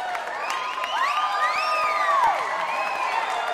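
An audience cheers loudly and steadily, with high whoops and shouts rising above a dense wash of crowd noise throughout.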